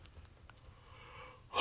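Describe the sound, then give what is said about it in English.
A long, breathy yawn, starting as a quiet drawn-in breath and ending in a sudden loud, rough exhale. No talking. “I gotta yawn. You ever yawn and you can't get the yawn out?”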